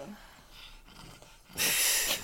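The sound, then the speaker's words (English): A dog named Lucy, overheated after another dog, George, lay on her, pants with quick, breathy huffs, ending in a louder, noisy gasp of rough breathing. “And oh, geez, Lucy's gonna start her gasping now.”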